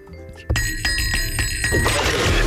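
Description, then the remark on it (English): A small cat bell rings with bright, sustained high tones, jingling steadily for about two seconds over a fuller background sound. No one speaks. “Bring your little cat bell there, will you?”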